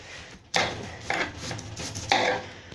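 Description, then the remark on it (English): Back-and-forth sawing: about four raspy, hissing strokes in a steady rhythm, each a fairly loud burst with short pauses between. No one speaks. “The back and forth sawing actually it's working a lot better.”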